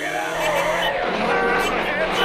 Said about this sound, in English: Here comes the car now. I wonder if that's him.